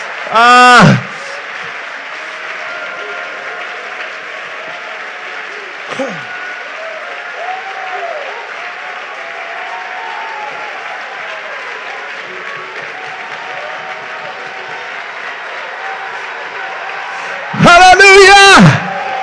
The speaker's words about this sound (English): Man, if you're glad to be in the church, clap your hands unto the Lord and give Him thanks.